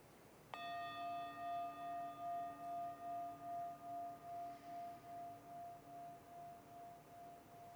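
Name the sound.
meditation bell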